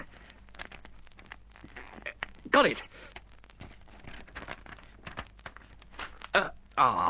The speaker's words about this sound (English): Now, I'll see if I can poke it through the paper and drag it out.